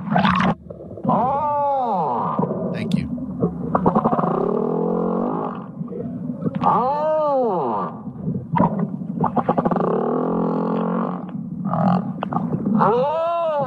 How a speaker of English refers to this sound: Humpback whale sings to find love. This is so great.